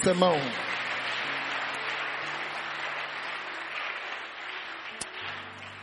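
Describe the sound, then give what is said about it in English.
An audience claps for themselves at a preacher's invitation, steadily in a dense, continuous wash for several seconds, with a brief voice at the start and low sustained keyboard tones humming underneath. “Clap for yourself.”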